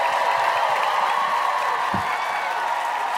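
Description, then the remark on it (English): An audience at a comedy show applauds steadily, a dense, even wash of clapping with some crowd noise mixed in, holding at a constant level from start to finish. “Clap it up for yourselves one more time.”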